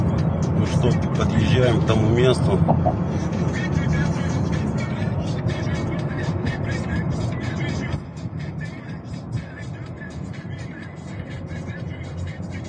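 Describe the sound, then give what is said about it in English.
Rap music with rhythmic vocals plays inside a car driving across a bridge, over the steady rumble of the car's road and engine noise, continuous and fairly loud, dropping a little in level partway through. “Just listening to a little rap music, I think.”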